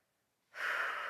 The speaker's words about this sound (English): But and excuse me, I am getting over a slight cold. So if you hear a sniffle or two, that's me.